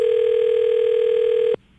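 A steady electronic telephone ringback tone on an outgoing prank call purrs loudly and evenly for about a second and a half, then cuts off abruptly into near silence. No one speaks.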